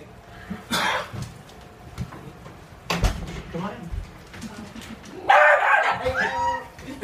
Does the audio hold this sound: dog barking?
yes